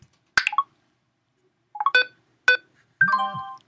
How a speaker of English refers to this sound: So you heard the beeping as it was scanning, and then the little musical tone when it discovered the item, and then it read the title of the page.